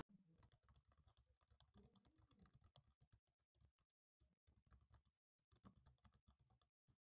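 Rapid typing on a computer keyboard, a dense run of crisp key clicks with brief pauses between bursts, fairly loud, with no voices.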